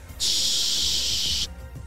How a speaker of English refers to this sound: Sure. I'll help you pour it into the sprayer. Thanks, Steve. Now, okay, that's enough. Okay, let's give it a test spray.